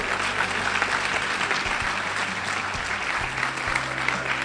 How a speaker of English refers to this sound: Thank you. A big round of applause,